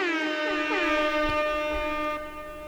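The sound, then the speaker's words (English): A goose-honk sound effect: one long, loud, nasal honking tone, rich and buzzy, holding a steady pitch with a slight waver before it fades at the end, with no one talking. “And that sound of the flu goose means it's time for me to tell you where you can find us when we're not here.”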